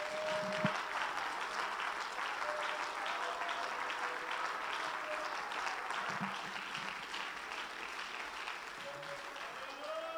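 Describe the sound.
An audience claps steadily for about ten seconds, giving the Lord a hand clap of praise: a dense, continuous wash of many hands, with faint voices and a few brief tones murmuring underneath.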